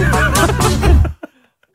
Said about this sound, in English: Have a listen. Sounds a bit like a swan honking.